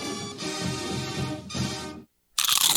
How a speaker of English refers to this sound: You know that sound anywhere. It's the crisp crunch of that first nacho chip. With its perfect cheese to sour cream ratio sitting atop a layer of delicious beans, it's a sip away from perfection.